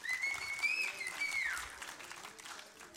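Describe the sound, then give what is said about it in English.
An audience at a church service applauds steadily for a few seconds, the dense clapping fairly loud, with a few high cheers or whoops rising over it early on before the applause gradually thins. “Applaud the Lord.”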